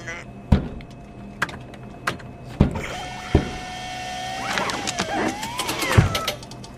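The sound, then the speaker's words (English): A few sharp mechanical clicks and knocks, then a snack vending machine's lever mechanism whirs steadily for a couple of seconds as the lever holding a selected snack is thrust forward, wavering in pitch, before a final clunk; muffled voices briefly overlap the whirring. “When the snack is selected, the mechanical lever that's holding it will be thrust forward, thereby knocking your cell phone out of your pocket and into the receptacle below, where you can pick it up and call for help.”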